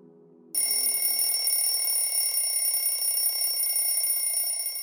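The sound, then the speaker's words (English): After a brief quiet moment, an alarm clock bell starts ringing loudly and keeps going without a break, a bright, metallic, continuous clatter until the end. “Your alarm just went off.”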